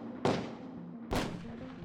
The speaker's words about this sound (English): As he stopped, a bunch of white guys came around the corner, surrounded us. Next thing I know, I hear gunshots.